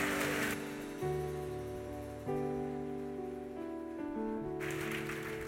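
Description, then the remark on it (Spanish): Sustained keyboard chords shift through a few changes, with brief bursts of audience applause, given when the speaker asks for a round of applause, at the start and again rising near the end over the music. “Alguien que pueda darle un aplauso, por favor.”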